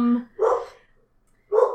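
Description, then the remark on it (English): A female dog, Junie, barks twice, fairly loud, with a pause of about a second between the sharp, punchy barks; no one talks over them. “Oh my god, is your dog an animorph? Oh, is she trying to keep us from revealing their plans?”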